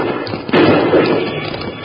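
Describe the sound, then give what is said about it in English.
Gunshots from bandits ambushing riders at the entrance to rocky Black Canyon ring out with bullets ricocheting off the rocks: a loud sharp crack around the midpoint, followed by a dense, noisy wash of sound that slowly fades, with no voices. “Whoa, them bullets sure go key holing out them rocks, Bill.”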